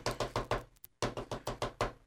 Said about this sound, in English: And so they arrived at Mayor Anschel's house. They knocked on his door.